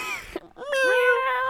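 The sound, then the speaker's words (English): A cat meows: a short, whiny cry, a brief pause, then a longer, drawn-out meow with a slightly falling pitch, heard on its own without talking. “Occasionally I hear a meow.”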